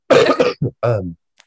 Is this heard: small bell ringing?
no